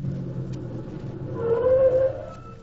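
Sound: car approaching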